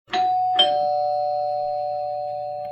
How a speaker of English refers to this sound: Well, thankfully, we live very close by and we can continue our regular get-togethers, Daddy Peters said brightly before the doorbell rang.